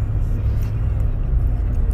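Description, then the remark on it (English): A truck drives wildly along the road, its deep engine rumble steady, with a low droning roar that holds for a couple of seconds without letting up. “Whoa, this truck driving crazy.”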